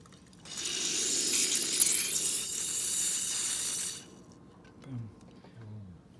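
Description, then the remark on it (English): Coffee, steeped about three minutes, being forced through a brewer as the plunger is pressed: a steady hiss of liquid rushing for about three seconds, then it stops and a faint voice murmurs briefly. “And we plunge.”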